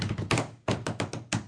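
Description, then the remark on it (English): A quick rhythmic run of hard, dull taps on a surface, about six or seven punchy hits in an uneven drum-like pattern, with no voices. “A little work on the drums there.”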